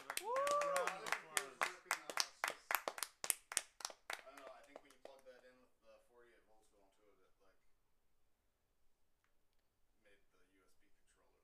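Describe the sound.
A short round of applause from a small group: steady, evenly spaced claps that gradually thin out and fade over about five seconds, with a brief vocal whoop at the start and voices chatting underneath.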